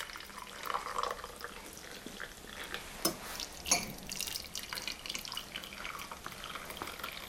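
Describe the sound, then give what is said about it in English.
A steady, fairly quiet stream of black tea pours and splashes into a glass tea strainer teapot for several seconds, with a few brighter clinks and splashes midway and no voices. “So, we've got a tea strainer teapot, and it's a glass one, so we can see how strong the tea's got to.”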